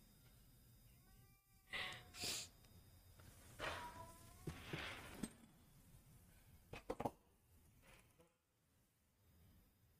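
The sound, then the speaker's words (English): A Bengal cat meows loudly several times in a row, drawn-out, insistent calls with brief pauses between them and a faint background hum. “Okay, if you want peace and quiet in your household, do not get a Bengal. They are the loudest cats on earth.”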